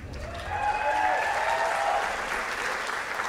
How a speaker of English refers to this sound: I don't know if that applause means weird or not. What does that mean?